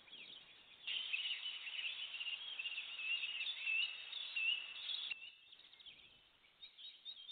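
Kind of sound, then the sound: bird, birds singing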